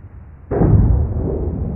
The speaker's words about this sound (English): Okay, so that sounded like a gunshot. That was an earthquake in Chile. So I'm going to tell you more about that because it's a much more interesting source than just that gunshot sound.